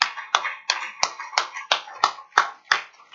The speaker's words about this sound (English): Y'all, if y'all don't clap again for that one.